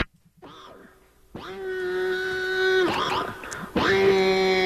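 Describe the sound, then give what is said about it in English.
A man's voice imitates a power drill with buzzing, harmonic whines: a short faint one, then two loud sustained whirs that swoop up at the start and hold a steady pitch, wavering briefly between. The noise is heard in the background of a song. “Is it a pig or a drill? Drill, yeah. I think that's a guy.”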